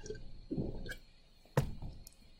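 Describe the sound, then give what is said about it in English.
Someone takes a quiet sip of iced tea: a soft wet slurp early on, then a sharp liquid gulp or click about halfway through, with no talking. “Oh, let me take a sip. It's iced tea, though.”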